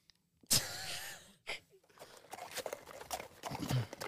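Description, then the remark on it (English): Horses' hooves clip-clop in a steady, uneven patter that grows gradually louder as they approach, following a loud, wavering horse-like call near the start. No one speaks. “after about 10 minutes have passed, you can see as the horses start to travel towards you.”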